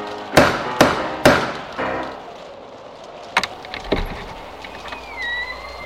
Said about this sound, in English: Now knock on the door.